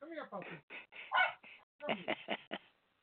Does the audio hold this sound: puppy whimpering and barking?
yes